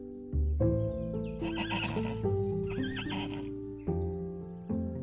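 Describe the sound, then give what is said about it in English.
A young donkey brays in a long, wavering, strained call that rises and falls, with a few heavy hoof thuds landing at the start and near the end. “They ran into the city, and just as Jesus had said, there stood a baby donkey.”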